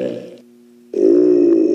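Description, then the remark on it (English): A deep, guttural creature burp sound effect made for Jabba, in two bursts: a rumbling belch, a brief pause with a faint low tone, then a longer, louder, throaty eructation. “who's famous for making belch and burp noises, was brought in to do Jabba's burp.”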